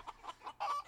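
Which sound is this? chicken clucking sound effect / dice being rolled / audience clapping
chicken clucking sound effect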